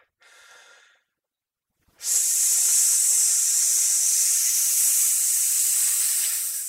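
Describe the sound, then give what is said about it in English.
A short breathy hiss is followed by a pause, then a long, loud, forceful hissing exhale through the teeth, done as a breathing exercise while clenching the butt cheeks and pulling in the abdominal muscles. It holds steady for several seconds before tapering slightly. No one speaks. “So but it just hiss and clench my butt cheeks while I'm doing it.”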